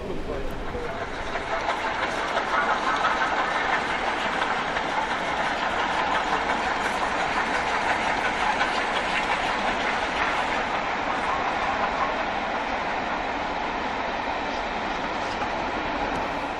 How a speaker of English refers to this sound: We're heading north towards Gloucester. Branches at the side of the track, scraping down the sides of the carriages.